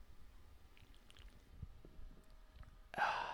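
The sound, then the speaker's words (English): A single sharp, airy slurp of someone sipping a drink arrives near the end, loud and hissy, after a few seconds of faint low rustling and soft clicks. “That sip actually came through the microphone pretty well.”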